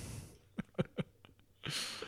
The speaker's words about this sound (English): A lot of breathing through my nose.